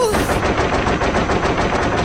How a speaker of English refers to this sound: What was that? Look where the robot shot the wall. It's going to pop!